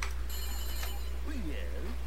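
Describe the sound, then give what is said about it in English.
A telephone rings once as a phone call is placed, a bright, steady electronic tone lasting just over half a second, followed by a faint voice murmuring over a low background hum. “anyway, yeah, let's make that phone call.”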